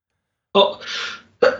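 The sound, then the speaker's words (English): A person sneezes: a sharp voiced burst gives way to a loud, breathy hiss, and a second abrupt burst begins right after. No one speaks. “Jesus, stop sneezing.”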